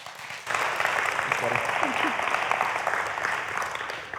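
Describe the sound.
A crowd breaks into sustained applause, a dense wash of clapping that starts abruptly and holds steady, with faint voices and cheers mixed underneath before it slowly begins to taper.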